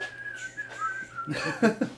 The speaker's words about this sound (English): I still need a whistle. Yeah, you still don't have a whistle. No, I just you gotta get a fancy whistle too. Maybe blow the whistle.